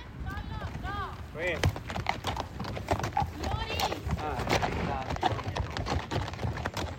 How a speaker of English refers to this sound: This is the Appian Way Regional Park, where we heard the crickets a moment ago. But during the day, you might hear horses like these clomping along on its basalt stones, as they have for thousands of years.